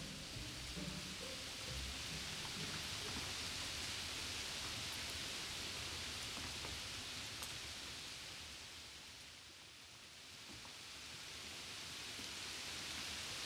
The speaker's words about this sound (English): So here we are, standing together back on the road at around midnight, having just been kicked out of the clubhouse, starting to think about Plan B. And then, of course, it starts to rain.